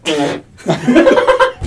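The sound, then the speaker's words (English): A loud fart noise imitated by mouth: a short buzzy burst, a brief pause, then a longer wavering, sputtering blast. “That just sounded real. That was the point. I'm pretty sure you farted with that.”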